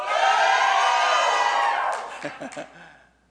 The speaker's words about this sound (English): Our tongue with joyful shouting. What does that sound like? That's about it right there.